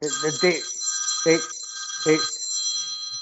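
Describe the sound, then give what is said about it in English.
A telephone rings steadily in the background, a bright sustained electronic tone running throughout, while a few short vocal bursts break in over it at regular intervals. “Now, that's not me ringing in the background”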